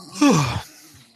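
A person yawns once: a breathy, drawn-out vocal sound whose pitch slides downward before trailing off into quiet, with no speech.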